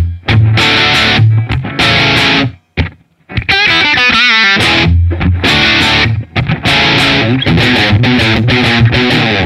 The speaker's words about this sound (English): Here's my crunchy sound. And the effect you're hearing now is called distortion. This is a, you know, the meat and potatoes rock and roll sort of, you know.